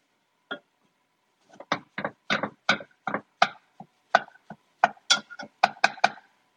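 A knife chops food on a cutting board, roughly fifteen crisp knocks in an uneven rhythm that picks up pace toward the end, with no voices; a piece is being cut in half.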